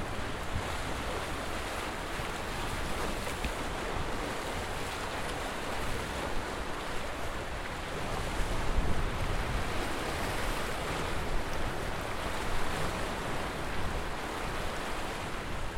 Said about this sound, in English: The sound of the sea we're getting now, the waves lapping at the rocks down there.